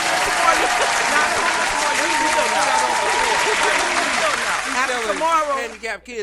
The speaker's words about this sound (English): I'm proud of myself. You know, I just locked down a whole nother business. God damn it. Give me some claps for that woo, shit.